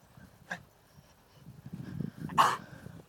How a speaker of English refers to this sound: The dog just coughed.